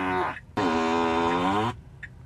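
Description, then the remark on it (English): Two loud, buzzy fart sound effects play back to back from a Tesla car whose turn signal sound is set to fart sounds as it turns left, a short one followed by a longer sustained rasp, with no talking over them. “he changed all the settings in the car to fart sound. So when he wants to turn left, he can make it sound like a fart”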